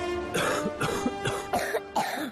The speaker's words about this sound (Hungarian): A hurutos köhögés legyőzheted Ambroxol égisszel